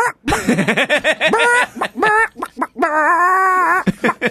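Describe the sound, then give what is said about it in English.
A person imitates a chicken, making a quick run of choppy clucks that ends in a drawn-out, squawking bawk. The voice is loud and alone. “Yeah, like, never do the chicken sound.”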